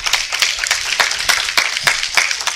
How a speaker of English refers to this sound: Hello, somebody. Give God a hand clap of praise up in here.